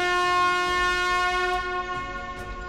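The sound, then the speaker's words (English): A loud blast from a ruby red elven whistle holds one steady, piercing tone for nearly three seconds. Its rich, harmonic sound stands alone with no voices, fading only slightly toward the end. “it's an incredibly loud whistle that they will be able to hear.”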